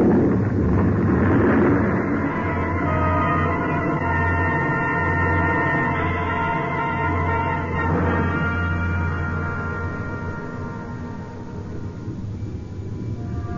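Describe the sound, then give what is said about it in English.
An avalanche of snow and ice, loosened from the ridge above by gunshots, rumbles in one loud, unbroken roar, deep and heavy, with a rushing hiss layered on top and no voices at all. “It must have been the shots that loosened the snow and ice on the ridge above. I heard the sound, and I ran.”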